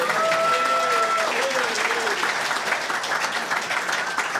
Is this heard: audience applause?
yes